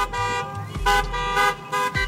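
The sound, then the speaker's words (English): Several car horns honk in quick succession at a socially distant drive-by car protest around a meat packing plant, long loud blasts overlapping one another, with a steady engine rumble underneath and no voices. “They decided to hold a protest, a socially distant drive-by car protest.”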